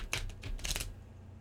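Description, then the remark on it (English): A large deck of 72 very thick tarot cards being shuffled up close to the microphone, a few quick papery riffling bursts in under a second, then quiet. No one speaks. “You can't really shuffle them like you would like a regular deck of cards. But I'll try.”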